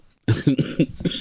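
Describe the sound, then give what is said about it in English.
After a brief silence, a loud burst of about half a dozen rapid coughs in quick succession, with a voiced, almost laughing quality, from a person laughing and coughing at the same time. “Yeah, it made me laugh and cough at the same time.”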